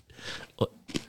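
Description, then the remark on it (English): Crunchy crackers being chewed close to the microphone, with two sharp crunching bites a moment apart over a soft, hissy background. “You look like you're about to eat the fuck out of them crackers, man.”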